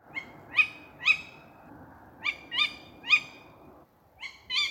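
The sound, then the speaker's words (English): A tawny owl, recorded from a bedroom window backing onto farmland in Salisbury, gives a series of short, sharp, high-pitched calls, loosely paired and repeated about eight times, over a low rumbling background with no talking. “So firstly, we have the sound of a tawny owl.”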